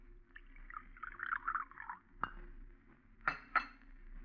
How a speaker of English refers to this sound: Here, I'll pour you some coffee.